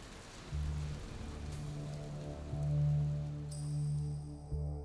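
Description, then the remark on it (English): Steady rain hisses continuously, fairly loud, while a low droning hum swells beneath it and a bright high tone appears near the end. No one speaks. “The rain felt refreshing instead of drowning.”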